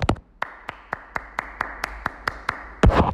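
hand clapping

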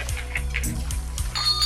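bell ringing

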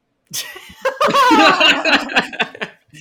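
throat clearing

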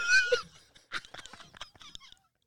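horse neighing

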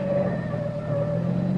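car engine revving

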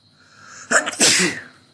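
human sneeze

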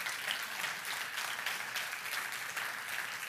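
audience clapping hands

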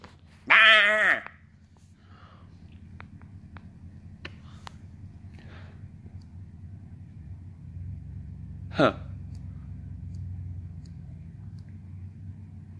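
sheep bleating sound effect

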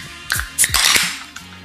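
glasses clinking

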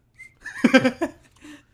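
person attempting to whistle

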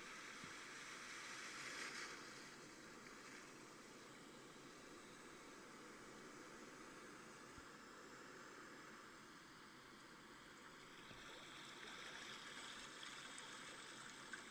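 ocean waves

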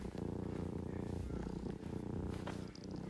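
cat purring

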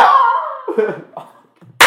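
single hand clap

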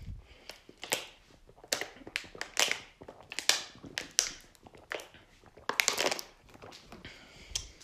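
drinking water

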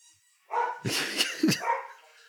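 dog barking

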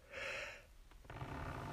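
yawn

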